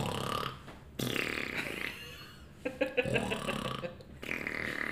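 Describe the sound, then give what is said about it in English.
A voice mimics snoring on the inhale and a farting sound on the exhale, several loud, raspy bursts in a rough repeating rhythm with short breaks between them. “She was snoring on the inhale, farting on the exhale. It was like.”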